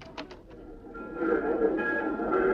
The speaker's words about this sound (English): Train now leaving on track 5 for Anaheim, Azusa, and Cucamonga.